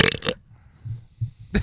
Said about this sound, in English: You had the weirdest burp ever. I sat there. I listened to it 10 times in a row because it was just like something was growing out of your head.